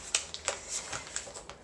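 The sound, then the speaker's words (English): Crisp paper crinkling and creasing, a quick series of sharp rustles and soft snaps as a sheet is folded in half while making a stunt paper airplane, with no voices. “Okay, so now we've got this tab down, and now we're going to fold this guy in half.”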